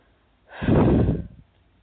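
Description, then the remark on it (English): A single deep, breathy exhalation swells up and fades over about a second, with quiet stillness before and after. “And just a quick note, I sometimes do some deep breathing when we're moving some big stuff.”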